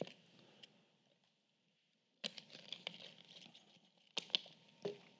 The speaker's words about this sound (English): It's raining.